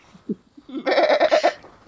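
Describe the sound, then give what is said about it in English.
A person imitates a goat's bleat: one loud, quivering 'meh' lasting under a second, its rapid wobble giving a convincingly goat-like tremble, preceded by a few soft breathy sounds. “it's like a high meh, so it's a meh that goes up at the end.”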